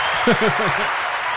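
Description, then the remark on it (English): A brief applause sound effect: a dense, steady wash of clapping, with a few short, voiced laugh-like bursts near the start. “You've got a sound effect for applause. Play it, man.”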